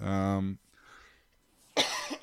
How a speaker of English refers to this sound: these random coughs tonight.